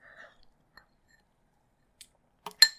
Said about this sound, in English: And I'm just going to take a quick sip of my protein shake here. Some little ASMR for you.